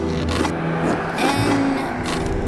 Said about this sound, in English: N-O. Okay, it's going to take forever if he always needs to carve his answer with a sword.